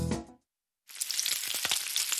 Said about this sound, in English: Hear that? Sounds like sizzling bacon, right? Trust me, it looks like bacon too. Only it's not. It's Johnsonville sausage strips.